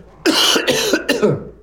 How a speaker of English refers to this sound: I'm going to have a coughing attack now.